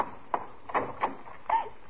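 A girl sobbing at night, muffled as though through a closed door: four broken, shaky catches of breath in an uneven rhythm, soft and dulled, with no talking.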